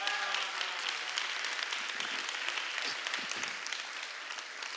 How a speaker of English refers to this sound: Somebody clap your hands this morning.